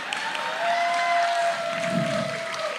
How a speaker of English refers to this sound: That's what we call a half applause, where yeah. half of the room... It was a applaud. Yeah. Applause-ish.